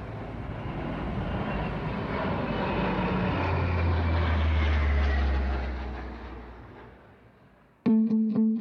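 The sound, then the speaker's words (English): A twin-engine propeller plane with four-bladed propellers roars low overhead at about 350 miles an hour across the Central Valley of California, its deep droning engines swelling loud and then fading away over several seconds, before a steady buzzing tone abruptly cuts in. “So you can imagine at 1 or 2 o'clock in the morning, this thing flying over your house at that speed with two engines, and they got four-bladed propellers on them.”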